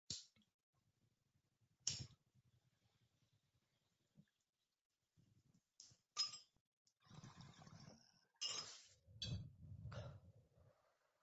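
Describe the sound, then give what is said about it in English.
Several sharp, bright clinks of glass pipe bowls, one of them new, tapping together in a toast during a smoking session, spaced a few seconds apart, with soft breathy inhaling and low rumbling noise in between. “Cheers. Cheers. In your new bowl.”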